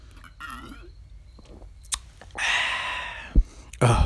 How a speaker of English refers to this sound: I'm actually sipping on that right now, just so everybody knows. I'm going to take a sip of that for you guys.